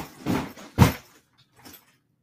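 A heavy baseball bag tumbles down stairs in a few irregular, muffled thumps. The second impact is the loudest and deepest, followed by a faint final bump and silence.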